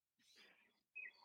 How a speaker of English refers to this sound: The birds? No, that's you. You have birds at your house.